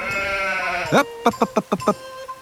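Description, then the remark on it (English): A sheep bleats loudly: one long, steady baa, then a quick run of five or so wavering pulses, with no talking. “Sheep are great livestock because, unlike shepherds, they thrive in all weathers.”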